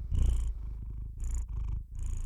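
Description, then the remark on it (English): A calico cat purring on a bed as an old woman strokes its tail, a steady low rumble that swells and eases in rhythmic breaths, with no voices, just the soft continuous purr. “the gentle calico cat, was in the bed next to the old woman, and she could just reach it enough to stroke its tail.”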